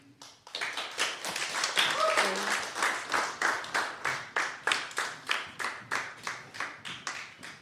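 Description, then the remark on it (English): An audience bursts into dense, crackling applause that soon settles into steady, rhythmic clapping in unison, loud, with the beats continuing evenly to the end. “This time you don't have to clap.”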